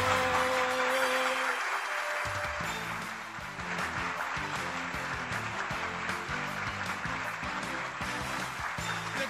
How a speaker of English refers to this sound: See, the applause is still playing, so when I played that, it's still playing because I didn't stop the other one.